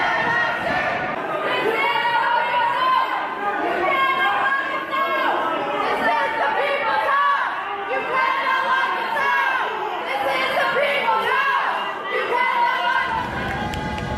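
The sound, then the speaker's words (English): A large protest crowd fills the air with dense, overlapping chatter and occasional raised voices, loud, continuing steadily with no single speaker standing out. “We saw sizable protests across the country. Here's just a sample of images from a few cities.”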